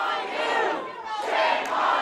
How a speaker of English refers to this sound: It got really rowdy. There was booing and chanting and singing.